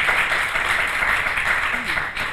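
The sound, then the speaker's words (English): An audience applauds a panel steadily, a dense, continuous wash of clapping at an even loudness from start to finish, with a few faint voices mixed in. “please give our panel one more round of applause.”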